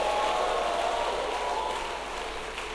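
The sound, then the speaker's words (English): An audience clapping their hands to give the Lord praise, a dense, steady wash of applause filling the whole clip at an even, fairly loud level with no voices over it. “Clap your hands and give the Lord a mighty praise.”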